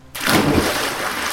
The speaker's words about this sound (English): When Peter heard this, he dove in the water.